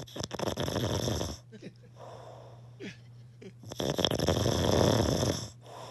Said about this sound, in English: Here's … snoring and Trish recording it.